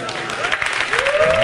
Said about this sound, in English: And they're all clapping, knowing what it is. Like, oh this is amazing.